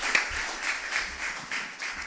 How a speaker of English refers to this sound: Let's clap our hands.